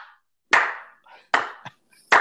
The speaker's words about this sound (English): Here's my slow clap for them.